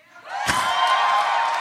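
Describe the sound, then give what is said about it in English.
An audience breaks into cheering that swells within a fraction of a second into a steady, loud mass of voices and whoops, with one sharp thump early on, sustained to the end. “Okay, now cheer if you think I will enjoy it.”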